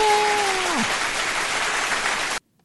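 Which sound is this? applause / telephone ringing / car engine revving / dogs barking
applause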